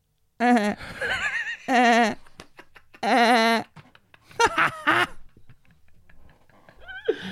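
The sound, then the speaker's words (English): A person imitates a goat with several wavering, nasal bleats in short bursts, fairly loud, with quieter breathy laughter-like sounds between them and a final rising cry. “Can you give us a little goat sound?”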